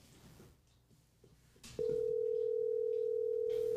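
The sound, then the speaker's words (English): A telephone line tone as a call is placed to a person who does not answer: after a soft stretch of faint background noise, a steady electronic tone starts abruptly and holds unbroken for about two seconds, fairly loud. “None of Mark's people are answering.”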